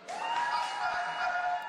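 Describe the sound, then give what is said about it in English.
An audience applauds steadily for a DJ, a dense wash of clapping with faint cheering mixed in, holding at an even level for under two seconds with no talking over it. “All right, y'all a little slow on that, giving the DJ a round of applause.”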